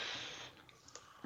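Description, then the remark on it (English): A soft, airy slurp as someone sips coffee, lasting about half a second, followed by a few faint wet clicks and a swallow. No one speaks. “Yeah, you yawn and I sip my coffee.”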